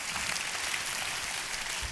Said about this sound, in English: Come on, you clap your hands for that. It's amazing.